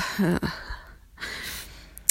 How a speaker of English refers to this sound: And just, you know, just starting to get the last of the breath out, you know?